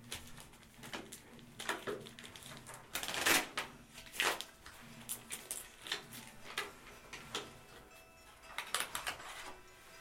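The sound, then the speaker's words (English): A deck of cards being shuffled, with quick papery riffles and bursts of flicking, several louder riffles standing out amid steady soft shuffling. “Shuffle, shuffle, shuffle.”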